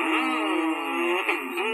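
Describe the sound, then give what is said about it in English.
A race car engine revs loudly and steadily, its pitch wavering up and down in one continuous roar lasting under two seconds, with no talking over it. “How about race car drivers?”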